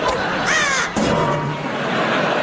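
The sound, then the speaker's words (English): A seagull squawks loudly at a beach, a couple of harsh, cracking calls in quick succession against a steady wash of outdoor background noise. “Just pass me the hockey stick and I'll hit that seagull into the wheelie bin again.”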